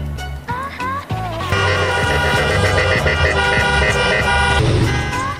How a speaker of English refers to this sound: Blocking traffic, honking their horns to protest some of the strictest rules in the country.